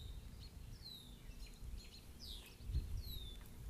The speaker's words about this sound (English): The red-winged blackbirds really, they really are territorial little beasts, aren't they? We have a hawk that comes and visits here every once in a while, but boy, they keep a check on that guy. They don't mind going up against that predator.